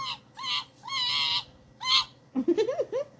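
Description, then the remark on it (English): Capuchin monkey calls: four drawn-out, high, whistling squeals, followed by a quick burst of lower, bouncing chirps and chatter. No one speaks. “A capuchin monkey.”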